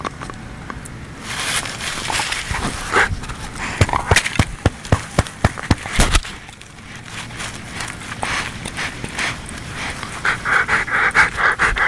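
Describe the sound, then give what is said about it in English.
A male dog pants steadily, quick rhythmic breaths with a few sharper clicks and taps mixed in, no talking throughout. “You are a super good dog.”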